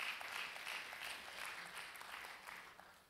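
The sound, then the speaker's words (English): An audience claps for Jesus steadily, many hands overlapping into a dense, bright wash of applause that holds at an even level throughout, with no voices standing out. “Let's clap for Jesus.”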